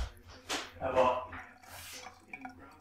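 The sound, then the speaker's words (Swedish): Water splashes and gurgles briefly as it is poured into a glass when someone fetches a glass of water for themselves, with a light clink of glassware, over a faint background hum and some indistinct vocal sounds. “Och nu hämtar du glas vatten till dig själv.”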